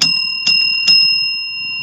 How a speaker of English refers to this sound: So I'm going to ring my physical bell that I have in the room with me.